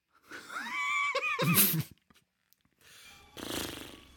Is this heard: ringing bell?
no